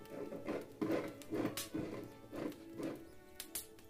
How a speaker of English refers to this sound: He stopped for a spell and looked over. The noise stopped, so he continued drinking. The scratching started up again.